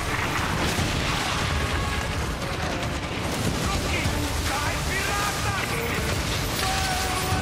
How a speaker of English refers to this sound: Like ship to ship battling with all these cannons and stuff. One guy's trying to sail towards them. You brace for fire, absorbing the first blow.